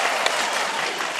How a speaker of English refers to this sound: I would need you to applaud at this point.